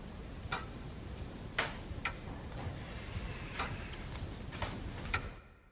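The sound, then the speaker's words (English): A recorded clock, manipulated to run slightly slower than one second a tick, ticks steadily, each sharp tick spaced a little more than a second apart, set against a constant low background hiss with no voices. “I recorded a clock and then manipulated it to be just ever slightly slower than 1 second a tick.”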